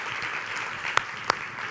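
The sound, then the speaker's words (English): A crowd applauds standing teachers, a dense, steady wash of many hands clapping at an even level, with a couple of sharper individual claps standing out near the end. “Why don't you give them a round of applause this morning?”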